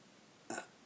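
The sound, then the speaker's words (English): A single short, abrupt burp breaks a quiet background, lasting only a fraction of a second before fading out. No one speaks. “Sorry. For my burp.”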